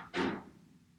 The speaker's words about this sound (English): Goddamn cabal's over here messing with my door.